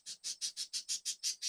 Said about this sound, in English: I live in Texas, and I knew, my birds are going crazy again.